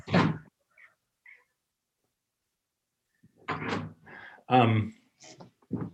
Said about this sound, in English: If you'll excuse me, I have a cat whimpering outside the door.